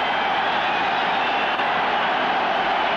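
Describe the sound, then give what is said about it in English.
A huge stadium crowd roars at the first all-Merseyside Cup final at Wembley, held on a Sunday on a rain-soaked pitch, a dense, steady wall of cheering that stays loud and unbroken from start to finish, with no single voice standing out. “First final here on a Sunday, and a roar the like of which you have rarely heard before.”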